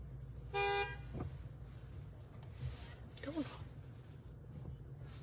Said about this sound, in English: Don't honk at them. Who's honking at them? They're just going along.